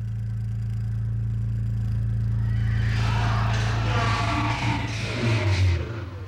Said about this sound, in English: I have several of these machines, and I call them resonators, make a resonant tone. But this little one, I gave it this little pig name because it had this sort of like oinky sound to it.